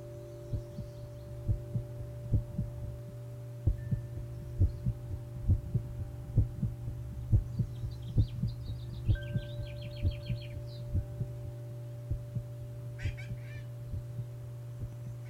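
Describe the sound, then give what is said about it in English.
A steady, slow heartbeat thumps in regular double pulses over a low continuous hum, with faint bird chirps and trills flickering high in the background now and then. “Come to meet your heartbeat.”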